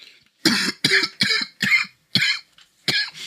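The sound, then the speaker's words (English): A loud fit of harsh coughing: six sharp bursts in quick succession with a brief pause before the last one, and no talking. “It's allergy season. That's not why I'm coughing, though.”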